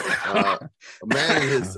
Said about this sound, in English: Sorry, guys, I got a bit of a cough hanging on that made me laugh.